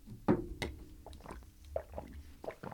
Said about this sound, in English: ASMR drinking sounds. Really living up to that inaudible name. This is really just dead air.